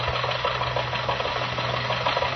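A car engine runs steadily as Jack Benny and Rochester drive early in the morning toward the Hillcrest Country Club. It is a continuous mid-pitched hum with a low rumble and faint rhythmic knocking, fairly loud and with no voices.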